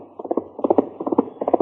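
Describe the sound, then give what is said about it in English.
Horse hooves of mail-carrying pony riders' horses gallop at top speed along a trail, in a steady rolling rhythm, quick clusters of three or four muffled thuds repeating four times with no voices. “24 hours a day, the pony riders urged their fleet little horses along the trail at top speed.”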